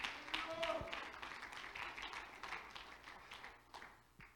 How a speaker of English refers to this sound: Come on, if that's what you want, clap your hands to the Lord. He's worthy.